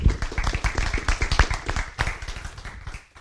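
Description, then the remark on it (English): An audience claps steadily in applause for Howard Weil at the close of an American Planning Association program, dense overlapping hand claps forming a sustained burst that holds fairly even in loudness for about three seconds before easing slightly at the end. “Let's have a round of applause for Howard Weil.”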